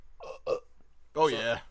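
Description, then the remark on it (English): Two short, croaky bursts are followed by a louder, drawn-out belch with a rough, rumbling tone. “Yeah, belch.”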